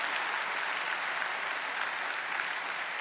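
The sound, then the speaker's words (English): A church audience gives God a round of applause, a dense, sustained patter of many hands clapping at once with no voices standing out, moderately loud and continuous throughout. “Can we give God a round of applause for the lives that were impacted this week?”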